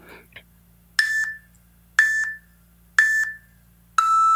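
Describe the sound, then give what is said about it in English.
Electronic timer beeps signalling that a one-minute answer time is up during an interview sound at a steady one-second pace: three short matching tones, then a fourth longer, sustained tone, clear with near-silence between them. “And we are going to have little beeps so you'll know when your minute is up.”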